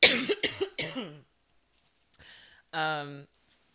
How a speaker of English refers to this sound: Okay, so one second, I'm gonna take a cough break.